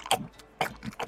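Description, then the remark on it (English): Crunchy chewing of a rat sandwich comes in a quick run of four or so rhythmic bites, each a short, crisp burst of mouth noise with a faint gap between them. “Munch, munch, munch.”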